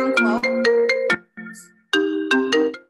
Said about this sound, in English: Sorry. Phone on do not disturb, and I still got a call.